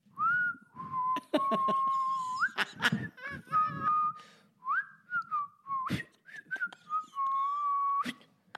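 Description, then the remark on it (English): A person whistles a slow, seething tune of long sustained notes that glide up and down, with brief sharp clicks and breaths between phrases, fairly loud. “It's like saying in his whistle, I'm totally fine with this.”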